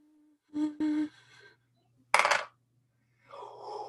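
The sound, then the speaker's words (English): Dice clatter and rattle across a hard surface in two short, bright bursts about a second apart, followed by a softer rustling noise. No one speaks. “Dude, let's get this dice roll going, man.”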